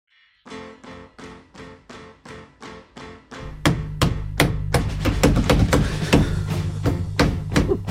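Someone drums on a countertop: about a dozen evenly spaced, hollow knocks, then a faster, louder, busier rhythm of thuds and sharp taps over a low, steady hum.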